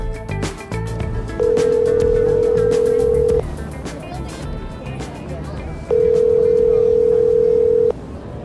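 A steady electronic ringback tone from a cell phone call sounds twice, each pulse about two seconds long with a pause between, over background chatter and street noise at the corner of Washington and Summer Street in Downtown Crossing, around 5:45 p.m. on a sunny day.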